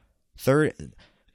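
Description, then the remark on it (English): Someone clears phlegm from their throat in a quick two-part rasp, a voiced push followed by a shorter rough catch, with nothing else around it. “and now I got all this phlegm in my throat.”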